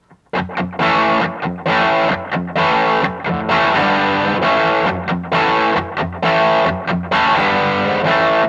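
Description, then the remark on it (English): An electric guitar played through a pedal with light, crunchy distortion plays loud, ringing chords, each held for a beat or two with brief choppy breaks between them. No one speaks. “Just a light distortion kind of sound.”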